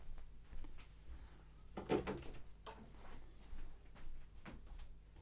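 door being opened

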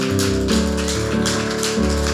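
audience clapping hands

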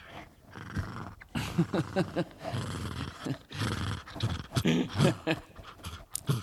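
dog growling and grumbling

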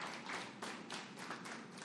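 audience clapping

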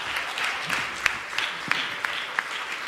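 audience applauding loudly

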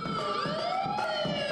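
police siren

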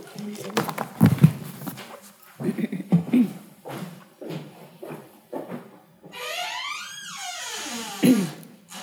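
footsteps

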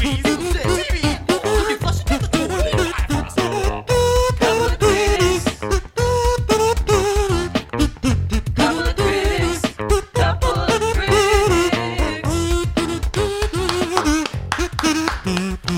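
kazoo solo

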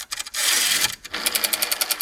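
rotary phone being dialed

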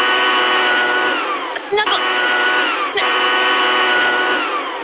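cordless leaf blower running

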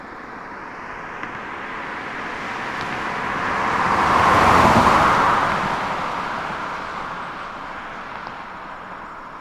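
car passing

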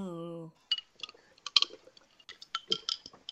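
glasses clinking

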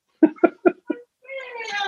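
cat meowing

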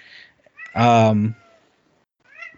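cat meowing loudly

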